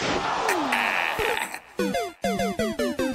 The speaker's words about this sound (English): Okay, what's the first thing? Taking a chair shot.